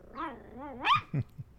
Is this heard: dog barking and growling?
yes